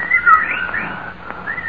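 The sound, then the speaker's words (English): Birds calling at night in sliding, whistled notes that rise and fall, steady over a faint background hiss, with a brief fresh call near the end. “Yes, the birds changed when his breathing changed.”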